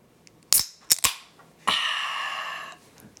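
A beer can being cracked open: a few sharp metallic clicks from the tab, then a crisp pop followed by about a second of bright, steady fizzing hiss. No one speaks.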